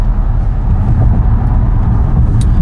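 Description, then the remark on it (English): A steady, loud low rumble of a car moving along the road in Los Angeles traffic, with continuous engine and tire noise and a few faint higher clicks, no one talking. “And we just hit some traffic.”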